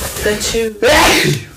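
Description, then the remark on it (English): A single loud, forceful sneeze: a couple of rising, voiced wind-up breaths, a brief catch of silence, then an explosive burst that trails off. “Gotta sneeze again.”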